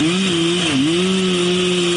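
A chainsaw cuts through the trunk of a tree with a man in it, cutting the tree down, its loud, steady engine drone dipping briefly in pitch as the blade bogs down, then holding its buzzing whine. No one speaks.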